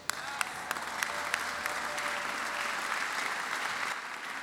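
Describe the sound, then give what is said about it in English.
An audience claps steadily, a dense wash of many hands at an even level, with a few sharper individual claps standing out early on. “If I don't ask you to clap and you are clapping, you better clap well.”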